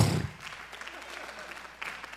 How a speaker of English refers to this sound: Now, I appreciate you clapping, but I'm going to bring you back down.